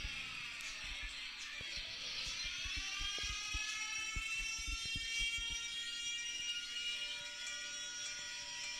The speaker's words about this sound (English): Imagine a big ass fucking tsunami comes out of nowhere, fucking bro. Siren, bro. That's fucking scary.